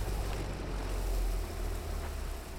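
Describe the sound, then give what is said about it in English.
A boat moves steadily through a smooth sea, its engine a constant low rumble beneath broad wash and spray, with no voices, a continuous sound throughout. “The boat changes course to investigate.”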